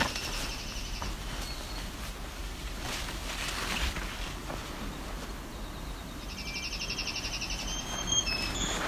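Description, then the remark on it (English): A bird gives a short high call near the start, then a longer, louder trilling call toward the end, heard over steady wind or rushing water noise. “This bird can't be much further either. It's right for a second he saw me and stopped.”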